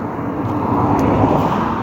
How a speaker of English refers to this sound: Well, we've already got a car coming. Oh, well, never mind.